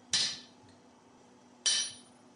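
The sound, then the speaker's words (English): Two sharp metallic strikes about a second and a half apart, each a bright ringing clang as a blacksmith tests a cold, newly made iron cutter against the side of an anvil to see if it will cut, decaying quickly, with quiet pauses between and no talking. “Yeah, it's cold now, so we can try it on the side of the anvil, see if it'll cut.”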